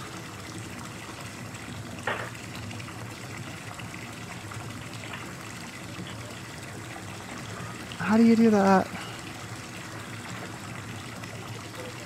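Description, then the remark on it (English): Water trickles and sloshes steadily throughout, a constant wash of liquid noise with a brief splash early on; a voice speaks briefly over it near the end. “Use these maxi pads as to soak up the water.”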